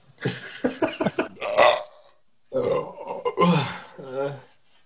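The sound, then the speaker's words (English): A loud burp after shotgunning a tall-boy can of beer rumbles out in a couple of long, gravelly pulses, then after a brief pause a second drawn-out, croaking belch follows, deep and groan-like. “Half of my burps sound like horror movie sound effects.”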